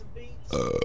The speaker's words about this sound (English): All right, actually, I'm burping into the microphone. Oh, dude! Whoa, were you raised in a cyber barn?